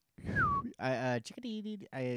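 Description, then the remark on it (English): A person imitates a chickadee's mating call with a single short whistled note that slides downward in pitch, followed by several buzzy, strained voiced sounds. “Can you do a chickadee?”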